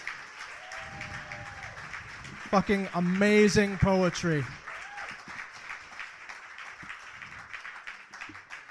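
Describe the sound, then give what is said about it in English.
A crowd claps in a steady, dense round of applause lasting several seconds for the semifinalists and runners-up of a poetry tournament, while a voice briefly calls out over the clapping partway through. “First, I want to give a big round of applause for all the semifinalists and the runners-up.”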